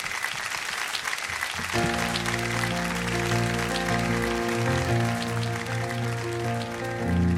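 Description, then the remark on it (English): A crowd claps steadily and warmly for the whole stretch, welcoming a singer. After a couple of seconds, sustained instrumental music swells in underneath the ongoing applause. “Ladies and gentlemen, a warm welcome, if you would,”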